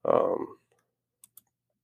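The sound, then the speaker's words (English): A brief burst of speech fades out, followed by two sharp clicks a moment apart, like a computer mouse or keyboard being pressed as someone clicks through on a computer. “Other than that, I'm just clicking through here to see if we see anything else that I may want to touch on.”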